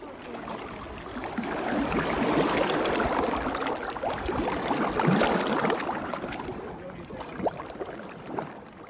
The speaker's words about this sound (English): Ah, the peaceful, ambient sound of water crashing on the beach, except this one is black, thick, and full of oil. Residents of Mauritius are helping to clear up after last week's oil spill from a vessel off the coast.